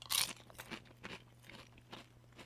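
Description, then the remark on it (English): Crisp crunching of chips with dip being bitten and chewed late in the evening, a loud first bite followed by several softer, irregular chews over a low steady hum. “We got ourselves some nice chicken tenders, we got ourselves some chips and dip today, we got some good tasty whiskey as well. So see if we can hear that crunch in the microphone.”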